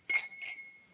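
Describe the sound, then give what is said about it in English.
Wine glasses clink together in a toast, a bright, high ring that hangs on for nearly a second, with a second softer touch of glass partway through and no talking. “Salud, everybody. Salud. Ching. Cheers. Chin chin.”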